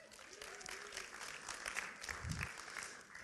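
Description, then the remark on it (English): An audience applauds a volunteer coming forward for a role play, a dense, even patter of many hands lasting a few seconds with no voices standing out above it. “Oh, look at that. Round of applause.”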